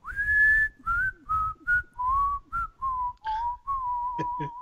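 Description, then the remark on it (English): A man happily whistles a cheerful tune as he putters around, a string of clear sustained notes with gentle slides between them, echoing upward, over soft low rumbling and a few light clicks. “And he's whistling very happily as he putters around.”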